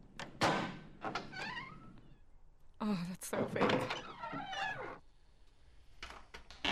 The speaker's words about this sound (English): Okay, just so you know, first of all, that's the squeakiest door I've ever... It's an old vault.